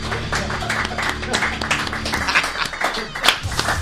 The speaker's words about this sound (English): This was Missed Apex Live. Polite round of applause.